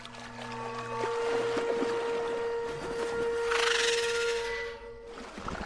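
Loud churning, bubbling water in the distance towards the center of a lake as several creatures emerge, with a steady low hum beneath it, swelling into a brief rushing splash near the end before fading. No voices.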